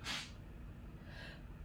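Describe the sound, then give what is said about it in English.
A sudden, sharp sneeze bursts out, followed about a second later by a softer, breathy exhale. No one speaks. “I had to sneeze.”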